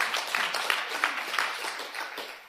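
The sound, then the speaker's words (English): A church audience claps for a couple of seconds, a dense, irregular patter of many hands at steady loudness that tapers off slightly at the end, with no talking over it. “I need y'all to clap occasionally so I can get a drink.”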